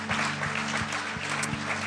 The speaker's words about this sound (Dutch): Fantastic. Come on, why don't we give a hand to these guys right Laten now? Laten we deze mensen een applaus geven.